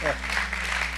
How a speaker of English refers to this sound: Yeah, you can clap. Clap better. The Amen. Golf clap.